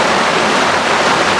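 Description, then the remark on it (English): Heavy rain pours down in a steady, loud, dense hiss, an unbroken wash of sound with no pauses and no voices over it. “So the rain is going to accompany us on this last one that I arranged.”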